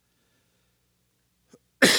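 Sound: cough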